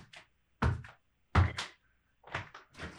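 A door shuts nearby with two solid, heavy thuds about a second apart, followed by softer shuffling and handling noises.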